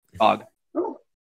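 Two short, loud barks from a dog, the first sharper and longer, the second lower and briefer, separated by a brief pause with silence afterward.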